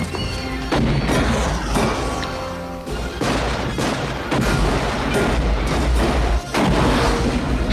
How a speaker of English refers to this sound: Why are things blowing up? It's papier-mâché. It's blowing up. It's also a fireworks factory.